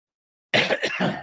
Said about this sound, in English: Bit of a cough, I'm sorry about that.